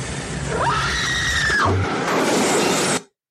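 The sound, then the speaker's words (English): A single shrill scream from a horror movie about a single alien rises sharply, holds for about a second, then drops away, set against a steady hiss of background noise, with no talking. “That's a good scream.”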